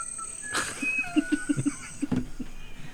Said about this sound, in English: I hear the sounds of nature from this one. Yeah, it sounds like a bird.